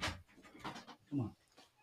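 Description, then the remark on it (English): A dog that sounds sick makes rough, labored panting and gagging noises in a few irregular breathy bursts, ending in a lower, throaty heave, fairly quiet and somewhat in the background. “Does it sound like we have a sick dog in the background?”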